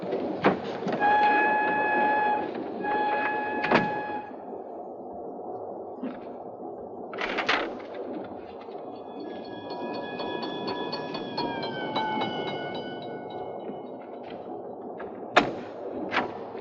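A train rolls along the rails with a steady low rumble, sharp clacks at irregular intervals and drawn-out metallic squealing tones, heard from inside the car with no one speaking.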